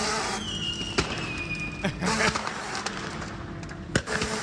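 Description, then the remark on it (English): Fireworks inside a burning RV in East LA crackle and bang at irregular intervals, about five sharp pops with a brief whistle, over a steady roaring rush of background noise. “That's why it's on fire. RV has fireworks. Still going.”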